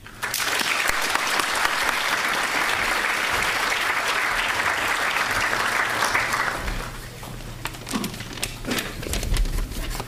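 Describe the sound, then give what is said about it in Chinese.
An audience at the London School of Economics applauds steadily to welcome Professor Liu before his evening lecture, with dense, sustained clapping for about six seconds, then the applause thins out and fades into scattered claps. “现在，让各位和我一起以最热烈的掌声欢迎刘教授今晚出席伦敦政治经济学院为大家演讲。”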